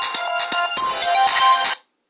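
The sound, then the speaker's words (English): A loud electronic phone ringtone plays a bright, repeating melodic pattern for under two seconds, then cuts off abruptly into silence. “Phone calls.”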